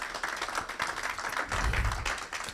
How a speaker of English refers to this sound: Matter of fact, you should give him a hand clap for that.